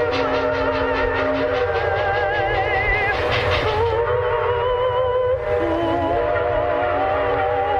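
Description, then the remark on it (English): A Pennsylvania freight train rumbles by loudly, its whistle sounding in long, wavering tones over the heavy, continuous roar of the wheels and cars. “KDKA fans still recall the whistle of that passing freight train”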